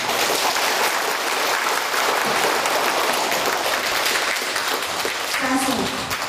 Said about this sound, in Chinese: 让我们再次以热烈的掌声感谢尊贵的索达吉堪布为我们带来的精彩演讲。